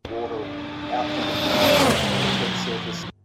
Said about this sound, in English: 1.6-litre turbocharged Formula One engine, 2014 spec,